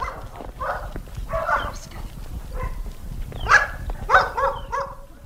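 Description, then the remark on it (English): Dogs bark in short, irregular bursts, moderately loud, as they are called, over a low, steady outdoor rumble with some shuffling movement in the background. “Come on, dogs. Come on. Come on, dogs.”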